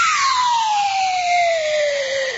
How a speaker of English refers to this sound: There it is. Sad, sad, sad. Slide whistle. There it is.